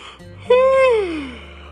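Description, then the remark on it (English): A single long, voiced yawn after a nap, held steady and then sliding down in pitch as it trails off, moderately loud with no talking. “… was still yawning from his nap.”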